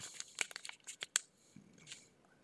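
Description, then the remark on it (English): Pages of a Buco News paper being flipped through to pick out a story: a quick run of crisp, rustling swishes and snaps over about a second, then a pause and one softer riffle. No voices. “I have my trusty Buco News here, so let me flip through the pages and pick one of these bad boys out for you.”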